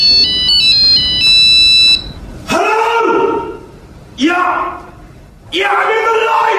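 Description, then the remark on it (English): The ringtone of Dom Jolly's giant mobile phone chirps out a quick electronic melody, then cuts off as a man shouts loudly three times in long bellows with short pauses between them. “Now, you might know him as the man with the giant mobile phone.”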